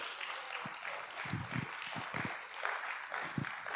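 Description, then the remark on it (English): An audience applauding for the Lord, a steady wash of many hands clapping at once with a few sharper, louder claps standing out, holding at an even level throughout with no voices heard. “Come on, if you receive that, would you give the Lord a good round of applause?”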